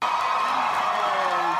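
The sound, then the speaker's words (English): A large crowd of thousands in Hall H roars and cheers as Johnny Depp comes out to give a speech as Grindelwald, a dense, steady wash of noise with scattered whoops rising above it and clapping blended into the din. “Of course, when he comes out, there's a lot of applause.”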